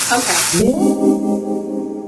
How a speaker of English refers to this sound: I hold the mic down, like, near the frying pan with the eggs in? No, the way, they're not going to make that much noise the way I do it. Okay. Let's pretend this kimchi frying noise is the fried egg.